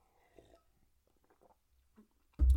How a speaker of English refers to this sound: I'm going to take a sip of water and see if I come out with an accent.